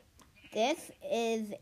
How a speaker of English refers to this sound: Sheep. Give me that sheep.